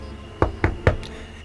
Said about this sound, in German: Und Roland klopfte an die Tür des Campingwagens.